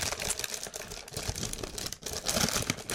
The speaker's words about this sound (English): Okay, here's your theater of the mind. Can you hear that crinkling?